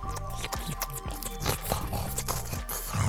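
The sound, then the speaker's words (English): Someone slurping and smacking on scooped ice cream, a steady run of wet, loud mouth noises with sharp little crunches and sucks throughout, no talking. “So no interesting conversations, just gross slurping noises.”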